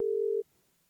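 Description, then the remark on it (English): A single steady electronic ringback tone from a phone line as an outgoing call to the caller's wife in another room connects, sounding clearly for under half a second and then cutting to near silence. “I hear it ringing.”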